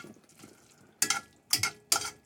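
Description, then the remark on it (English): A spoon scrapes and stirs pasta with about 2 tablespoons of added pasta water through thick sauce in a pan over turned-up heat, with three loud, bright swishing strokes after softer, quieter movements, each stroke rising sharply then trailing off with a wet sizzle. “Stir and stir and stir.”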